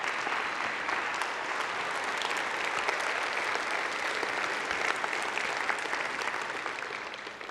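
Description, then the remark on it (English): An audience on its feet claps steadily as a clap offering to the Lord, a dense, even wash of many hands sustained throughout with no voices standing out, tapering slightly at the very end. “Let's stand on our feet and let's give the Lord a clap offering.”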